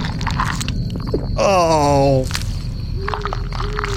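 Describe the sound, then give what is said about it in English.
Crunchy, wet chewing of flesh as a cannibal character devours a body in a game, a steady run of crackling bites and squishes lasting throughout, with a brief groaning, falling tone rising over it midway. “Oh, the sound. It does taste like chicken, though.”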